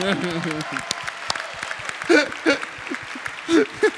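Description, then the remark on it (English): An audience applauds steadily for their interpreter for about four seconds, a dense crackle of clapping with a few voices calling out and whooping over it. “Round of applause for your interpreter.”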